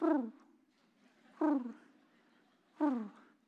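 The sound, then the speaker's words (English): Three low, throaty coos from Bobby the pigeon repeat at an even pace, each a short sound that slides downward in pitch and trails off, with quiet pauses between them and no talking. “Are these the thoughts of Bobby the pigeon?”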